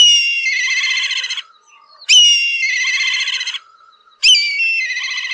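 A black kite gives its shrill, whistle-like call three times, each starting with a sharp high note and dropping into a long quavering trill, separated by short pauses.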